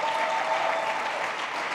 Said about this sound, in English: Just the energy, man, the people have been fantastic. Give yourselves a round of applause, man.